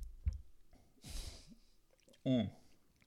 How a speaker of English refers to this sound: I wanted to emphasize the point, so I took a sip.